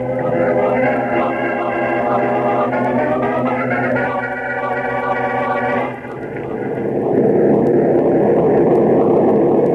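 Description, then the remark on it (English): A steady, loud droning hum of an airplane engine in flight, a plane flying with a tailwind to New York, fills the whole stretch, its pitch shifting slightly partway through, with no voices over it. “This tailwind will be in New York in about an hour, Chief.”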